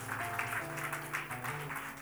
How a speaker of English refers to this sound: Give yourselves a big clap. Give yourselves a big clap.